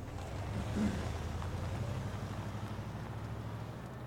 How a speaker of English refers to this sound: Engine revving.